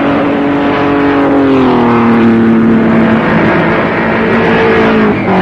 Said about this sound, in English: Speeding cars are always a thrilling spectacle, and these crowds had little thought of danger as the cars sped by at speeds well over 100 miles an hour.